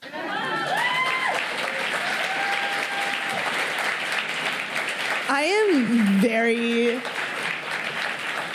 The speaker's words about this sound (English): I think you can applaud there.